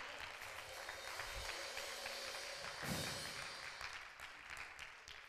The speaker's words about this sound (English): Come on, clap your hands.